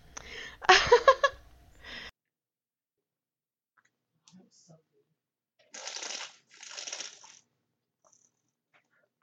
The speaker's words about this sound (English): I am so sorry. I forgot that I was drinking a circle water and I just slurped so loud in that mic. My bad.